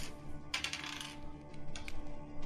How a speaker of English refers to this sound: Where's the dice for it? It's a D8. Where are you, D8? There we go.